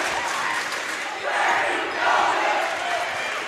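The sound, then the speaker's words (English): A basketball home crowd of Cardinal fans, including the Bird Squad student section, roars in a steady, dense wash of cheering and shouting, swelling louder in two surges as the fans rally for a comeback. “You can hear the Cardinal faithful into comeback mode here.”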